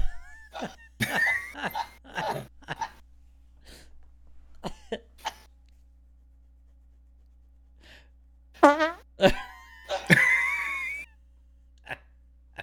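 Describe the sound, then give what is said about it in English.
Hand-made fart noises: a quick run of short, wet sputtering bursts, a few softer pops, then louder, longer squeaky blasts and one last brief toot, with no talking. “I can make realistic fart noises with my hand.”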